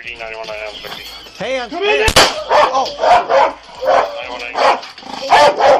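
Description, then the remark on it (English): A police dog barks loudly and repeatedly, with one sharp bang cutting in partway through, then a steady run of rough barks continuing to the end. “We're going to send that dog in.”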